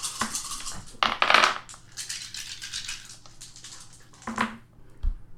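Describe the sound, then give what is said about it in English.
Five dice clatter and rattle across a hard table during a tabletop game roll, with sharp clicking bursts near the start and a few scattered knocks as they settle, moderately loud, no talking. “Cora would be rolling 3 dice. Good thing she's not doing this. I got 5 dice.”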